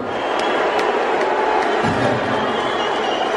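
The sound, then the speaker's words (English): A large crowd, urged to make some noise for the richest man in the world, roars in a steady, dense wash of noise for a few seconds, with a single sharp clap cutting through near the start. The reaction stays loud and unbroken throughout. “One clap and a bunch of”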